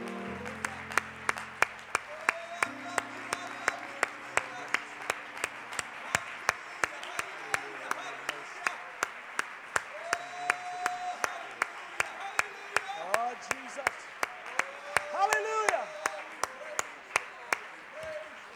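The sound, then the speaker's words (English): An audience applauding together in a hand clap of praise to the Lord before being seated, a sustained wash of many hands clapping at a brisk, fairly steady rhythm, with voices calling out and cheering underneath, swelling briefly near the end. “Let's give the Lord a great big hand clap of praise before we're seated.”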